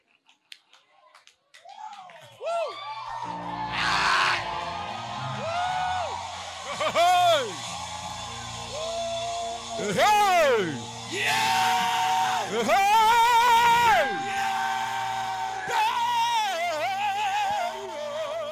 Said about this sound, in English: Okay, so those of you who think we shouted for nothing, wait. If you had any hearing problem, check it now.